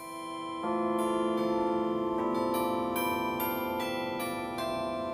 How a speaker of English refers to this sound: The way these chimes work, you can see that there's some metal rods specially tuned to sound as if they're a cast bell, and they really sound spectacular. I'm up here on the roof of Geisel Library, on the roof of that spaceship-looking building